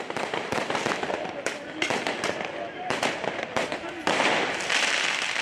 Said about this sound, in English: Many people are armed with firework mortars, so Roman candle blasters, which should be fired from the ground up into the sky for major pyrotechnics, are actually being fired horizontally at police.